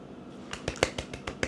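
A short burst of scattered hand claps, about seven sharp, crisp slaps at an uneven pace, a couple noticeably louder than the rest, with no voices.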